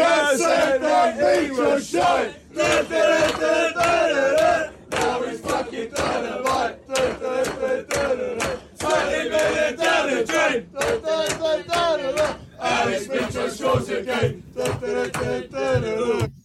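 A football crowd chants the 'Parker Said That Mitro Shite' chant in unison, many voices bellowing a rhythmic, sing-song phrase over and over with short gaps between lines, loud and steady throughout.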